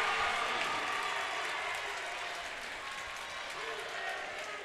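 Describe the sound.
The Vikings' home crowd at a basketball game cheers and applauds in a gymnasium during a Marine City timeout, a dense, steady roar of clapping and shouting voices that holds loud for several seconds and fades only slightly toward the end.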